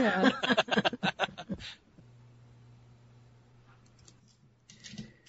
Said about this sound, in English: I'm trying to roll these dice some more.